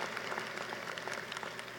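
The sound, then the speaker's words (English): Steady applause from a crowd for the city of Buffalo, New York, during a speech, a dense wash of many hands clapping at once, moderately loud and sustained without pause, with no voices standing out. “Yes, please clap for Buffalo.”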